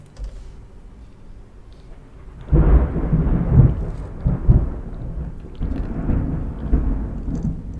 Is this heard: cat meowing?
no